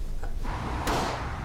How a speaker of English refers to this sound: That's gunfire.